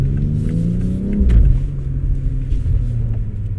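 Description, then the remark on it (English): The engine of an M performance SUV roars loudly, its deep growl climbing in pitch as it accelerates hard from a takeoff, with a brief shift around the middle before the rumble keeps pulling. “So you're saying the way you just took off”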